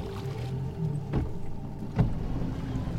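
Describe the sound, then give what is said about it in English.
A harvest barge moves steadily across water with a low engine hum and lapping, punctuated by two brief knocks or splashes against the hull, with no one speaking. “This is my harvest barge.”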